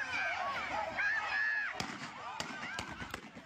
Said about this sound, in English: The Dragons Elite Academy youth football coach was shot and killed Saturday evening after a game for 9-year-olds ended in gunfire. This is video of the shooting sent to TMZ.